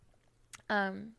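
food or drink, sipping coffee

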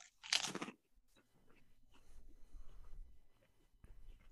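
food or drink, crunching potato chips

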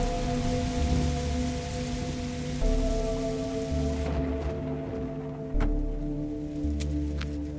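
nature, rain falling

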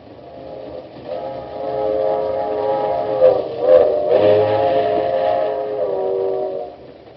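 vehicle, moving train with whistle

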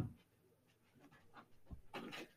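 animal, dog panting

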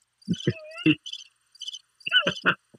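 insect, crickets chirping

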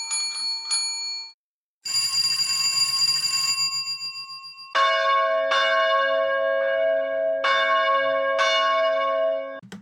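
signal or alarm, ringing bells

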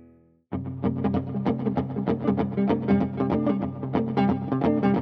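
sound effect, guitar through fuzz pedal

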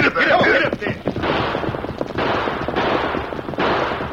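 impact, gunfire

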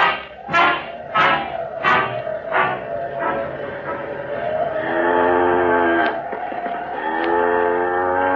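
animal, cow mooing

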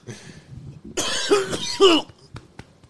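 human body sound, smoker's cough

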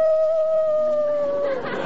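animal, dog howling

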